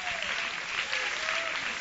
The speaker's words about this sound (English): You can clap.